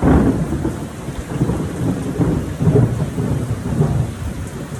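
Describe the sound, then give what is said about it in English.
Low, continuous rumbling thunder rolls beneath a steady wash of rain during a July 1st thunderstorm in Texas, about 70 degrees; the storm sounds heavy with no voices present. “One of the things about grilling in Texas is you sometimes, it'll be, it is officially July 1st, and due to the rainstorm, the thunderstorm, whatever you want to call it, feels like it's about 70 degrees.”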